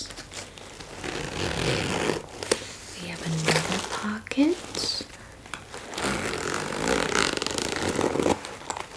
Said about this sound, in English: This bag, it's like a blue backpack. It's sort of medium to small size, I would say. It's very crinkly. Has a lot of zippers.